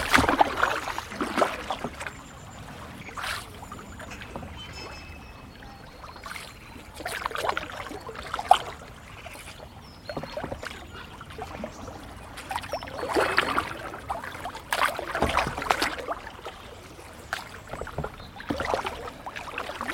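Paddle strokes splash into the River Wye every few seconds from a paddleboard drifting downstream, each stroke a soft swoosh over a steady, quiet background of flowing water and gentle lapping. No one speaks.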